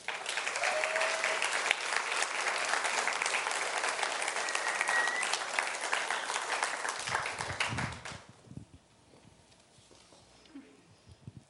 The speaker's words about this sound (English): I appreciate your clapping.